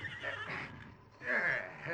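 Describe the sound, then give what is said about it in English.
A stagecoach horse whinnies in a barn, a shaky neigh followed by a second louder, higher whinny. Both are fairly strong, with a faint low rumble of stall noise beneath. “Soon the horses were made comfortable in the barn.”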